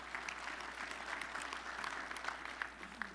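A crowd applauds steadily, a dense wash of many hands clapping at once with scattered sharper claps standing out, sustained at moderate volume throughout.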